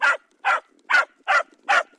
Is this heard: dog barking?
yes